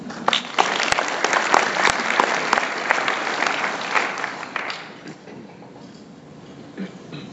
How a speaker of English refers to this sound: So again, give yourselves a round of applause.